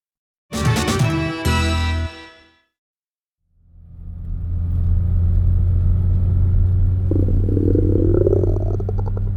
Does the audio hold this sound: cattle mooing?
no